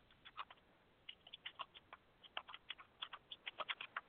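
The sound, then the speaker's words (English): Quiet, steady typing on a computer keyboard: a continuous run of light, irregular key clicks, sometimes in quick bursts, with no voices. “Well, sorry if you hear me typing.”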